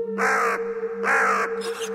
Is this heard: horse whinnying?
no